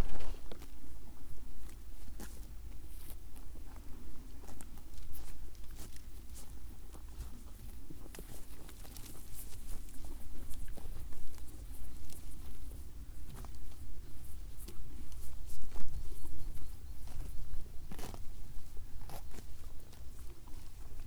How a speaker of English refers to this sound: I come across some Exmoor ponies chewing on the scrub.